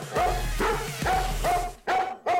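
A dog barks repeatedly in a quick, rhythmic series of about six sharp, loud woofs, with no voices around it.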